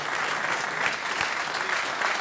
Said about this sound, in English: And why don't we keep that applause going for our next act? Please welcome Collingwood legend and podcaster, Dane Swan!